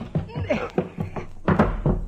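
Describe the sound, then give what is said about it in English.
Dull, heavy thunks of a door that opens only about 2 inches being shoved and forced, a few uneven bumps with a stronger jolt late on, while voices strain and murmur over the effort. “Shove on it, dear. My thoughts exactly. It gives a little.”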